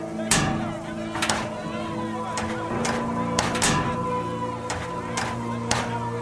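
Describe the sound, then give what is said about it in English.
Repeated heavy bangs on a hatch, about ten sharp thuds at irregular intervals, some in quick pairs, over a steady low hum. “That's the hatch.”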